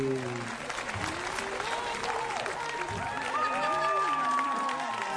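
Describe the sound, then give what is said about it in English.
Steady, dense applause fills the whole five seconds at an even loudness, with voices and a few raised calls rising over the clapping, welcoming the audience to the Dr. Joe Show. “That deserves the applause of the entire globe.”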